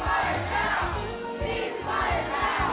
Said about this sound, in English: Moments later, those chants turned into cheers for Congresswoman Barbara Lee, who supports the ceasefire.